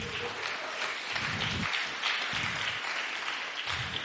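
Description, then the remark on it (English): A crowd claps steadily to welcome a speaker, a dense wash of many hands at an even loudness with no single claps standing out, sustained throughout with no voices. “Let's welcome Rose with a clap.”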